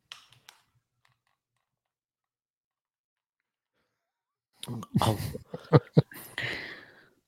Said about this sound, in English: Sneezing? What's that? Sneeze. Sneeze is correct.